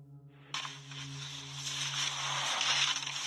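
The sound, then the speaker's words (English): Steady, hissy rustling fills a seemingly accidental voice message sent from a Facebook account, starting abruptly and growing slightly louder over a few seconds, with a low electrical hum underneath and no clear speech. “featuring much of the same rustling noises, as well as a muffled male voice speaking to the female and instructing her not to touch something.”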